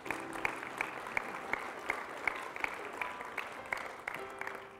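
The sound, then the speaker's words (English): An audience gives the Lord a hand clap for his word, clapping steadily, many hands blending into a dense, sustained patter with a few sharper, louder claps standing out, heard at moderate volume with no voices on top. “Would you give the Lord a hand clap for his word today?”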